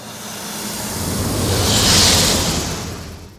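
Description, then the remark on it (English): A sci-fi TIE Fighter fly-by built from a snake's hiss in place of an elephant sound: a roaring, hissy whoosh that swells steadily, peaks with a bright sizzling rush around the middle, then fades away. No voices. “So here's a version of the TIE Fighter sound that instead of the elephant, I played a snake sound.”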